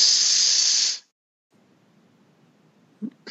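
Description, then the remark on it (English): A person imitates a snake with a loud, sustained hiss lasting about a second, followed by near silence, a brief soft sound, and the start of another hiss at the end. “S-S-S-S. As in a snake hiss.”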